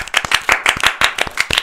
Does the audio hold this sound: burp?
no